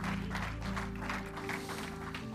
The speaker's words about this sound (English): Praise God. Give the Lord another hand clap this morning. What a great God.